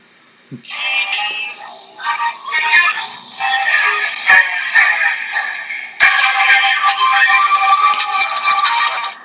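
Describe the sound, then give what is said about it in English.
Keith Lee's wrestling entrance music on SmackDown bursts in abruptly, loud and dense with bright, buzzy tones, then a sharp hit partway through kicks it into a fuller, more sustained stretch. “And then we hear this music.”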